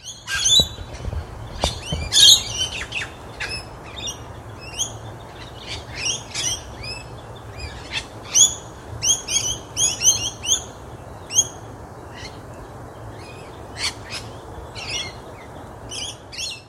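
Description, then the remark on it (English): A flock of rainbow lorikeets, recorded on a phone in Royal Park at the centre of Melbourne on Wurundjeri country, screeches and chatters, with shrill, high-pitched calls bursting out in rapid, overlapping clusters over a steady low hiss, with no voices. “scientists think that rainbow lorikeets don't actually travel very far, mostly moving around their local area for food, water, and shelter”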